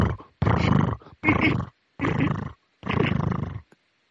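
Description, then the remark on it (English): Lenny, a huge cat, purring loudly in the studio: a deep, rattling rumble that swells and fades in about five rhythmic bursts with short pauses between breaths, and no voices. “And he was like, his purr was so loud that he was definitely a part of the show.”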